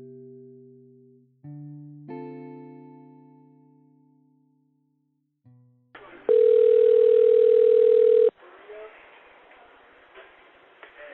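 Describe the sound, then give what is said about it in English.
A few soft decaying electronic chime notes give way to a loud, steady telephone line tone held for about two seconds, then cutting to a hissy, open phone line. “The night everything changed for Willie's friends and family started with this phone call.”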